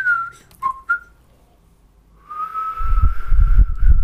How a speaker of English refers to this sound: You didn't say your name. I did. Oh, you just whistled it.